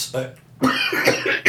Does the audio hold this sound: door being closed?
no